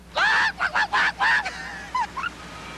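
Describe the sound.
A person imitates a clucking chicken for a Klondike bar advertisement: four loud, nasal squawks in quick succession, followed by a couple of softer, shorter clucks trailing off.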